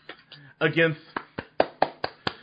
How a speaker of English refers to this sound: It's going to be the champ who runs the camp, AJ Styles, my personal favorite wrestler right now. I'm applauding for him.